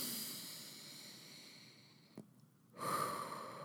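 Slow, deep breaths drawn in through the nose, breathy: one long airy inhale, a brief quiet pause, then another louder, rushing breath begins. No talking.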